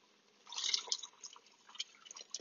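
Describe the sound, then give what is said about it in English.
The last bit of chicken broth, a little more than half a cup, is poured into a risotto pan, a bright splashing, sizzling pour that swells quickly, then trickles into scattered drips and bubbling for the remaining couple of seconds. “All right, last bit of chicken broth.”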